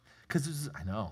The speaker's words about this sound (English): I heard that yawn, and I took it as a we also have the Holy Spirit.